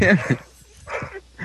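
A dog barks three times: a loud double bark at the start, then another bark and a shorter one near the end, with brief quiet gaps between.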